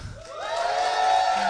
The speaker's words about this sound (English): All right, so let's practice. I'm going to say something, and then I'm going to say ta-da, and then we're going to vigorously applaud. The Lord is good. Ta-da!